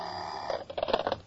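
A telephone bell rings in a quick, rattling burst of repeated strikes, moderately loud, following a brief steady tone; no one speaks.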